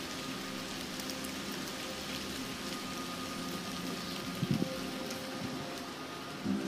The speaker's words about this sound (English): As you can hear, it's raining.